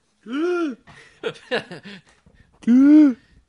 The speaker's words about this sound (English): These are the weirdest hiccups I think I've ever had.